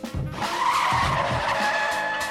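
A loud, sustained screech of car brakes and skidding tires, a harsh whining squeal lasting about two seconds with rumbling low noise underneath, prominent with no voices.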